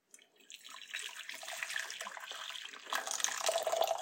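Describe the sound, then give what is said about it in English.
Hot water pours steadily into a larger bowl, a continuous splashing and gurgling that grows slightly fuller and louder toward the end, with no talking. “So I'm just going to pour hot water into my larger bowl.”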